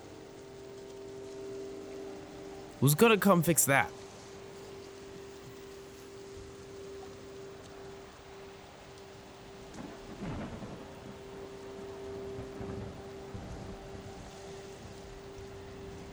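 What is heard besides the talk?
rain falling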